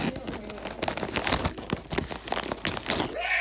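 Loud crinkling of a Doritos spicy nacho chip bag being handled, with dense irregular crackles and rustles running continuously for a few seconds.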